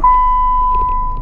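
A Volkswagen car's seatbelt warning chime: a single steady, fairly high electronic tone held for about a second over a low, constant engine rumble, with no talking.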